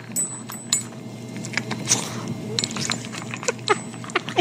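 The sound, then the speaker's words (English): A dog named Theo eats from a metal bowl: irregular clinks and bright jingling taps scattered over a steady low hum, with soft crunching and chewing in between. “You recorded Theo eating out of his bowl.”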